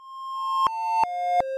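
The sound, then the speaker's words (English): Little electronic beeps: a steady synthetic tone steps down in pitch three times, each drop marked by a sharp click, with the level swelling slightly between clicks. No voices. “You hear a little beeping sound.”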